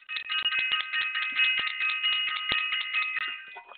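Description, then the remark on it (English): A small bell is shaken rapidly and continuously for nearly four seconds, a bright, high, steady jingling with quick clattering strikes throughout and no voices. “Where's my bell? Here we go.”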